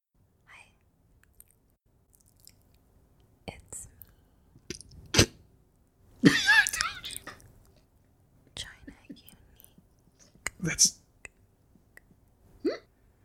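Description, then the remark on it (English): Chewing Wrigley's Big Chew gum: irregular wet clicks and smacks, with a few louder sticky bursts and soft breathy, whisper-like mouth noises between quiet pauses. “I'm just gonna put some Wrigley's big chew in my mouth right now.”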